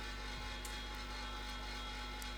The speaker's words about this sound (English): I feel like that sounds gonna be annoying. Oh, sorry, the fridge is going crazy, guys, but don't worry about it. It'll be over soon. It will last like 2 minutes, I'm sure.